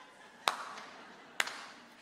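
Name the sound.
slow clap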